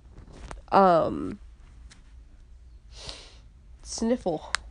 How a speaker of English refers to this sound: Sniffle.